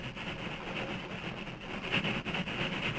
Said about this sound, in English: The engine reached the crest of Jackknife Hill and continued westward without incident.